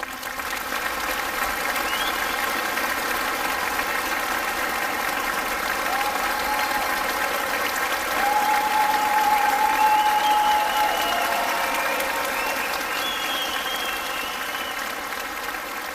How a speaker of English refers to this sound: Let's give a round of applause for our guests.